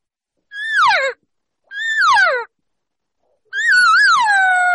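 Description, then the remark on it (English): A person imitates three cow elk calls on a call, with the changed tone and cadence a cow uses when inviting a bull to come her way: two short nasal mews that slide downward, then a longer wavering one that rises and falls before dropping off, each separated by brief silence. “If I'm asking the bull to come over to me as I move up, I am now going to change my tones, my tone or the cadence of the call, what a cow will do when she's inviting or asking the bull to come her way.”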